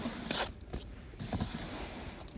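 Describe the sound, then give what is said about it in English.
A deck of oracle cards being shuffled, with quick papery riffles and soft slaps repeating in short bursts and no voices. “I'm gonna keep shuffling.”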